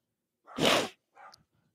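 A dog barks twice: one loud, full bark followed by a shorter, softer one, with no talking and quiet around them.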